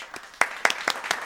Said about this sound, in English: Round of applause.